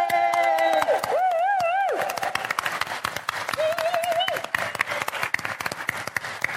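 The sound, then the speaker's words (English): A crowd breaks into loud, sustained applause mixed with whoops and high whistling cheers, dense clapping continuing steadily throughout the stretch. “But can I get a big cheer for somebody else, which is my job share on the other side of the world,”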